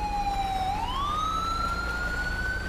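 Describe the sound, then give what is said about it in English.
A loud, steady police siren wails, its tone dipping briefly and then rising slowly into a long, sustained pitch over a low rumble of road noise. Nobody speaks. “I'm going to kill Siren.”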